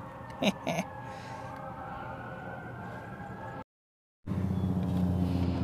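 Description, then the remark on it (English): A steady, droning helicopter rumbles outside, its low churning hum constant with faint tonal whine, broken by two short knocks early on and a brief cut to silence before the drone returns louder. “Do y'all hear that? That's some type of helicopter.”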